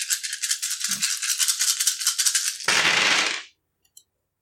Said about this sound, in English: I'm rolling a shit ton of dice for brass knuckles. Okay, like, this is crazy. I better get some decent successes here. Watch me get, like, 2.